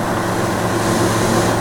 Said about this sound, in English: It gives us about 15 extra horsepower, so it's 115 horsepower Rotax engine. The turbo gives that extra 15, and when the turbo is not engaged, it's a 100 horsepower.